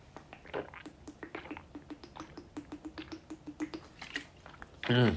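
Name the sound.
sipping water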